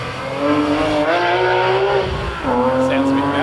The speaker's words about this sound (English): Actually, this is competition special. These are over 1990 cars. So there's a 997 GT3 RS coming through.